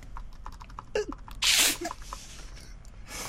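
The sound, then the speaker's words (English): Rapid, irregular clicking of someone typing on a computer keyboard, fairly quiet, broken midway by a short, loud breathy burst before the keystrokes resume. “I don't even know, but all I can hear is typing.”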